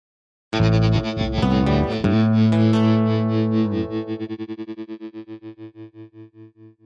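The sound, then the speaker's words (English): A short burst of loud, heavily distorted music starts abruptly, holds a buzzing chord for a few seconds, then fades out in a fast pulsing tremolo. No one speaks. “I'm going to put some music on.”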